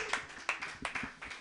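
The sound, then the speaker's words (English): A short burst of hand clapping, several sharp claps landing at an uneven pace, moderately loud and with no voices over it. “Everybody clap wildly.”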